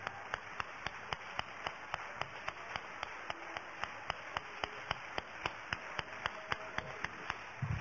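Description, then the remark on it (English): An audience claps their hands to the Lord during a church teaching session, a steady, even beat, about three claps a second, sharp and bright, carrying on without pause and with no voices over them. “Let's all clap our hands to the Lord.”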